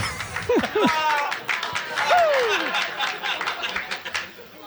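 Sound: audience applause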